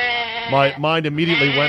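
A goat bleats loudly, one long wavering cry with a shaky, quavering pitch that rises and dips before trailing off.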